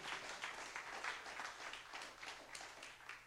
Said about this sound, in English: Thank you, Jesus. Can TOC give him another hand clap of praise?